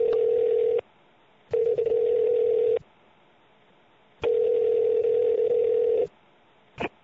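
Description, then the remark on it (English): A telephone line gives steady electronic tones in long bursts separated by short silences, thin and band-limited as if heard through the handset, with no one talking, as someone dials up two guests. “Would you like me to dial them up?”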